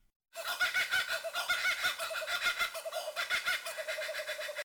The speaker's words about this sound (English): So that's a laughing kookaburra.